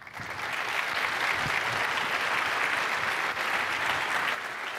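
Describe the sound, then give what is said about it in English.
An audience claps for a speaker after a technical talk on data extraction. The clapping lasts about five seconds, a dense, even wash of many hands that holds at a consistent loudness before tapering slightly at the end. “Give her another hand of applause.”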